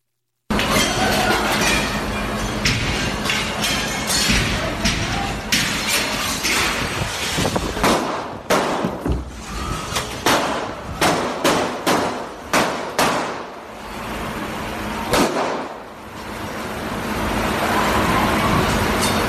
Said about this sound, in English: I want to tell you there's nothing visually graphic in the video, but you will hear the sound of some of the gunfire and get a sense of the confusion inside for patrons trying to figure out what was happening and how to escape.